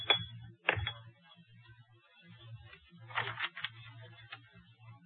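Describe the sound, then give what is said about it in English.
At number one faculty row, Dr. Hall taps a favorite pipe against a hard surface to knock out the unsmokable residue, a few sharp knocks in small irregular clusters with quiet pauses between, over a low background hum. “Hall turning the pages of a script and a slight tapping as Dr. Hall knocks the unsmokable residue from a favorite pipe.”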